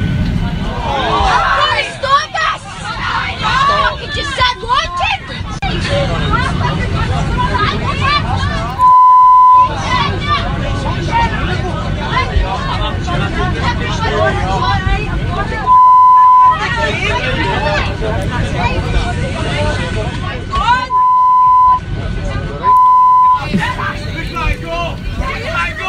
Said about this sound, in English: Okay, a lot of beeps in there. You get the idea.